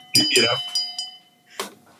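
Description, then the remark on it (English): A shame bell is struck and its bright, steady tone rings on for over a second, with short bursts of voice sounds around it and another brief burst near the end. “You know, maybe that's the shame bell ringing time, right?”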